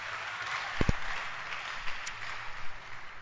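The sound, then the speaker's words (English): An audience at a church service claps their hands together for the Lord, a dense, steady patter of many hands that keeps going throughout, with a couple of sharper, louder claps standing out early on. No one speaks. “Clap your hands once again for the Lord.”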